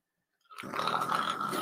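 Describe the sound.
A voice imitates a snore: one rough, rasping, throaty breath that starts suddenly after a short silence and holds steady and fairly loud for about a second.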